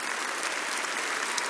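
Steady, dense applause from a large crowd, many hands clapping at once in a continuous rattling wash that holds an even loudness throughout, with no voices standing out.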